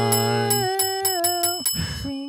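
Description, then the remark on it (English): A voice imitates a ringing bell, chanting a quick run of rhythmic "ding" tones, about eight strokes in steady succession, then a short breathy pause and a final held tone. “Ding dong ding ding ding ding ding ding. Is that annoying yet?”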